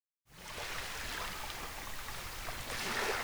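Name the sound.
waves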